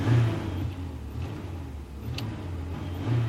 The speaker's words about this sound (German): Also wir fahren 25, hier ist 70, nun drück mal ein bisschen aufs Gas.